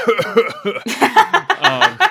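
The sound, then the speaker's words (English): A voice coughs into a microphone in a rapid string of about ten raspy, rhythmic coughs that blur into a maniacal, laugh-like cackle, loud and continuous with no talking, as an impersonation of Grievous. “Just cough maniacally into a microphone.”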